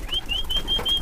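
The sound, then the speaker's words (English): Pigeons being shooed out of a small cage on the tin roof of a brick home in the morning, with a thin, steady high whistle pulsing in and out over a soft, constant background rush; no voices. “When I wake up every morning, the first thing I do is release my pigeons.”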